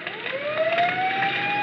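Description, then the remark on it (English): A fire siren sound effect played offstage during a stage performance winds upward in a single rising wail, loud, with a rushing noisy background and no voices. “Now the fire siren.”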